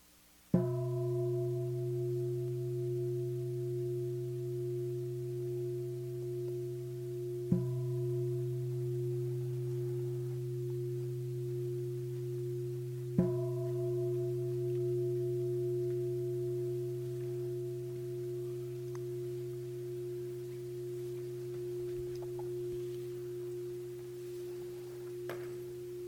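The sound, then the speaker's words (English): A meditation gong on a meditation retreat struck three times to mark the end of a sitting, each stroke several seconds apart, its deep humming tone sustaining and overlapping into one long, steady ring with no talking. “The next gong will mark the end of the sitting.”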